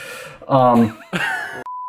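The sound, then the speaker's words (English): A phone call notification beep: one steady, clear electronic tone sounds near the end, right after a burst of voiced, groan-like vocal sounds. “Getting a phone call.”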